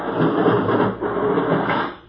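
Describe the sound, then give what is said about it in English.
An airlock's outer door opens with a loud, steady mechanical whir and rumble, holding for about two seconds before fading out. No voices are heard. “There goes the outer door.”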